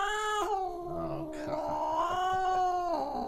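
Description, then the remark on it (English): A single loud, drawn-out cat yowl played from a soundboard wavers in pitch for about three seconds, unbroken, with no voices around it. “Blake warned me before, leading this in that there was going to be some sort of sound coming from a soundboard”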